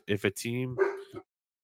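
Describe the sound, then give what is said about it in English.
The speaker's dogs bark: two quick, sharp barks followed by a longer, drawn-out whining bark, fairly loud, with no talking over them. “my dogs are making a guest appearance.”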